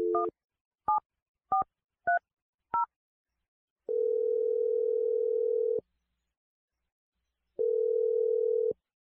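Five quick touch-tone beeps as a phone number is dialed, followed by two long, steady ringback tones separated by a pause of silence. No one speaks.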